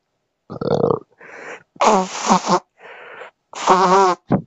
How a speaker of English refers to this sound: I have to blow my nose. Hold on.